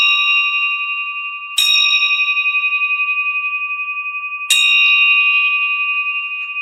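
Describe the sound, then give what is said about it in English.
A hand bell rings loud, struck twice about three seconds apart, at the start of Morning Prayer at St. Andrew Rectory in Lakeland, Florida, on May 23rd. Its bright, metallic tone sustains and shimmers steadily between strikes, with no voices. “Gives me a reason to ring this bell.”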